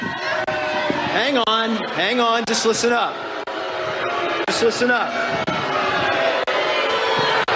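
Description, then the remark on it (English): A crowd at a Trump campaign event boos and shouts in a loud, continuous roar while Ohio Lieutenant Governor John Husted, who suggested the audience wear masks, speaks over the noise on an amplified microphone, trying to quiet them. “And at a Trump campaign event yesterday, Ohio's Lieutenant Governor John Husted was booed for suggesting that the audience wear masks.”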